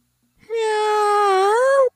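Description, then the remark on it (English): A person's voice imitates a cat's meow: one sustained, tonal wail lasting over a second, fairly loud, rising slightly at the end before cutting off. “gave us this for his kitty cat meow.”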